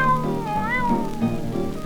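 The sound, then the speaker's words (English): A wild cat in a menagerie gives a long, drawn-out meow with a wavering, sliding pitch, loud, lasting nearly two seconds over a steady low background hum. “Saw the wild cat and the wild cat meow.”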